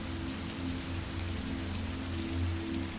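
Raindrops drip and patter from ivy strung around a white trellis by a rose garden, in a steady, continuous wash, with a faint low hum underneath and no voices.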